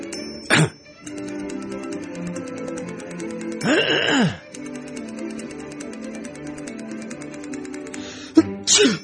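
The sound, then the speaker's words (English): A single sharp, loud sneeze bursts out near the middle against a quiet background hum, with a couple of brief thumps before and after. “Bless you”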